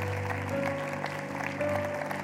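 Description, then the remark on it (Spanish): An audience applauds in a steady, dense wash of clapping over a sustained low instrumental drone, with no one speaking. “Damos un aplauso a ellos, es algo nuevo, es tremendo.”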